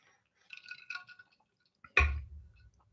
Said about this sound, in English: So at this point, I'm going to take a drink of water.